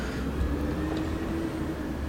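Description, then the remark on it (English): A loud bus charging past, its heavy engine rumbling steadily with a deep low growl and a faint droning tone riding on top. The noise stays loud and even throughout, and no one speaks. “Man, these buses are obscenely loud buses. Charging through.”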